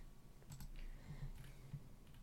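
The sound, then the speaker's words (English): Soft, rapid typing on a computer keyboard and a few mouse clicks, fairly quiet, with irregular taps scattered over a couple of seconds and no one talking. “I'm clicking on you.”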